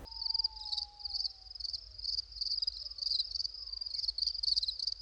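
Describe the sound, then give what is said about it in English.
Crickets chirp in a steady, high-pitched pulsing trill that runs unbroken for several seconds, with no voices, only a faint low hum beneath. “Crickets.”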